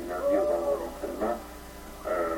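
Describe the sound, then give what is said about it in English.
An owl hoots three times in a slow, uneven rhythm, each call a wavering, mid-pitched tone of moderate loudness with no other sounds around it. “It's that owl.”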